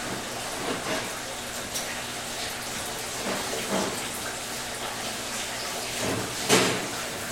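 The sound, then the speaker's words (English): Water runs steadily from a tap into a fermentation vessel while making wine, a continuous hiss and splash that swells briefly louder near the end. “Yeah, so this might be the first time you ever made wine to add water to something.”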